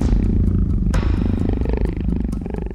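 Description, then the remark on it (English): A big cat purrs in a deep, continuous rumble, loud and steady with a fine pulsing texture and a brief rough burst near the start of the second second. No one speaks. “Fix purred.”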